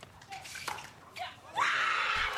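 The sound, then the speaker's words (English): A woman's loud, high-pitched scream, from a family member of player Etta Wright attending the game, cuts in after a quieter, noisy stretch and holds steadily for almost a second, piercing like a fan yelling at a game. “The whole game, she was screaming so loud.”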